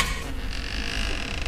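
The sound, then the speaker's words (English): A door creaks open in one steady, drawn-out groan lasting a moment or two, moderately loud, with no voices over it. “Hey, we got the thing working. The door, I mean.”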